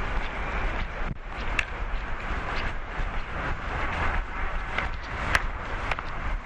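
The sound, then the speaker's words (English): Steady outdoor wind rushes and buffets the microphone with a constant low rumble while someone walks around BC Place, broken by a few faint clicks and footstep-like taps; no one speaks. “Very windy.”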